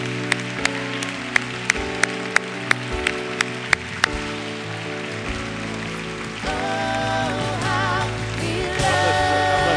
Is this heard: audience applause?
yes